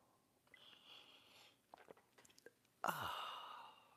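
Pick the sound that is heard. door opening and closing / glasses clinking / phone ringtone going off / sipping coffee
sipping coffee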